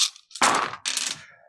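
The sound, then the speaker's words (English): A handful of dice, nearly every die the player has, is rolled onto a hard table during a tabletop game turn. The dice clatter in two quick bursts, rattling and tumbling before settling with a few faint ticks. “I'm almost rolling every dice I have available to me.”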